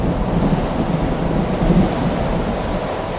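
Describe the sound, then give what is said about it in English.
A heavy storm roars steadily, with low rolling thunder rumbling beneath a constant wash of rain and wind. It is loud, and no one speaks. “Thus speaking, and having carefully shaded his lamp, he hurried me to one of the casements and threw it freely open to the storm.”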